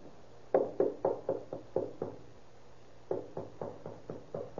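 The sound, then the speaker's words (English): A police officer knocks on a hotel room door in two quick bursts, about seven sharp raps each, fairly loud, with a brief pause between the sets and no voices. “Knock first and tell him what he says is all right.”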